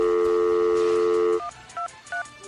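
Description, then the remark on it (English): A steady phone dial tone hums for over a second, then cuts off as three short touch-tone beeps follow in quick, evenly spaced succession, clear, as someone hits redial on the phone. “I'm going to phone. Just hit redial.”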